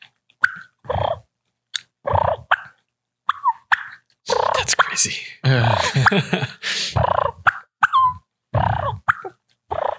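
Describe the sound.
A series of short, rolling, fluttery purrs made on a newly built mouth call, fairly loud, with brief pauses between bursts and a longer rattling run in the middle; the flutter is made with the end of the tongue rather than the throat.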